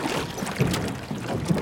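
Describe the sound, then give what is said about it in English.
Paddles splash and churn through water as a group rows a boat as hard and fast as they can, quick, steady strokes with a rushing slosh and rhythmic surges, heard without any talking. “Great, now grab a paddle and paddle as hard and as fast as you can.”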